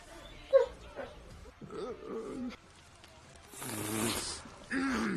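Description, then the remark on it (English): A dog barks a few times in the background, in irregular bursts, with a drawn-out whining note between barks and some louder rough noise near the end. “The dog barking in the background makes this perfect.”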